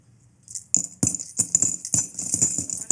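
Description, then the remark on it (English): Coins jingle and clink in a quick, irregular series of bright metallic chinks with a shimmering high ring, fairly loud, with no voices. “30 pieces of silver, which is money, yes.”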